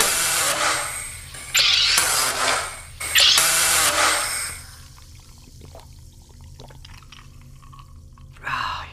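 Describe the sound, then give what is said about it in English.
Loud hissing bursts of a SodaStream machine carbonating water, followed by a quieter stretch of fizzy liquid being poured and trickling, ending with a brief splash. “Fresh, sparkling water in seconds.”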